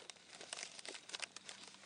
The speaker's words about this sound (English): And crinkly paper and plastic.